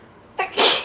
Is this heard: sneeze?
yes